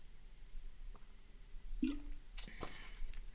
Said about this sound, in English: Let's talk about Basque Catalonian independence, because I'm going to say one thing very clear after I take a sip of this water.